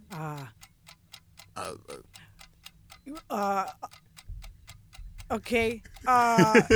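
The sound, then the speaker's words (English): A two-minute clock timer ticks steadily and quickly throughout, crisp regular clicks running under bursts of people talking and exclaiming. “2 minutes on the clock starts now.”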